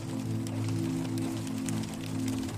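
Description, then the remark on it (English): Steady rain patters on a roof as a storm intensifies, scattered light taps sounding over a continuous low droning hum. No voices, just an even wash of rainfall. “The rain taps on the roof and lulls you into a trance.”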